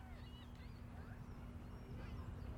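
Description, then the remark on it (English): Faint seagull cries drift in and out over a steady, heavy low rumble of machinery-like noise, the calls thin and scattered across the few seconds. “Seagulls? Seagulls. Can hear them a little bit, right?”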